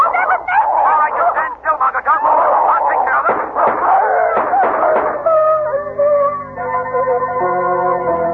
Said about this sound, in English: Look, Margot. Those two figures running after Whittington. It's the dog, the giant dog. They're chasing him, Lamont. Oh, they're tearing to pieces.